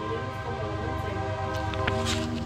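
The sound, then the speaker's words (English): A train rolls by at night, heard from a house in Ciudad Mendoza, Veracruz, with a steady, heavy rumble and sustained droning tones, a sharp metallic clank cutting through near the end. No one speaks. “And now I'm here in the same house where I heard that train sound.”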